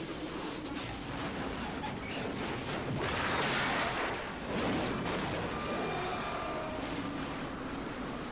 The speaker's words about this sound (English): A plane shrouded in black smoke passes overhead.